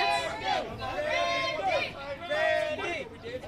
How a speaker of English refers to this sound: The kids love …. I can hear him over here cheering.